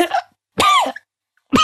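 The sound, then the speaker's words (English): A voice mimics a little boy's wet, phlegmy cough: three short, throaty bursts with gaps between them, fairly loud, with no other talking. “As you see a little boy with a wet cough”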